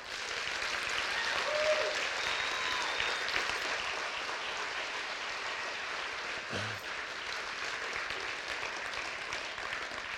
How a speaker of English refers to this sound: So that, thank you for the late clap.